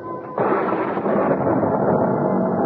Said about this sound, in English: I was startled by an enormous thunderclap, followed by the wrenching split of wood.